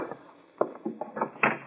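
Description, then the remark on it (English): A door being opened: a short run of muffled clunks and rattles, about five knocks spread over a second, the last one loudest, with no voices. “All right, open the door.”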